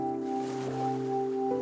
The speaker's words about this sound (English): You find a place to sit near the shoreline so you can watch the endless waves approaching the shore.